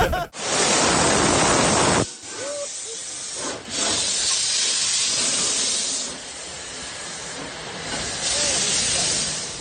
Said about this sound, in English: Well, as the famous locomotive puffed out of Doncaster Station,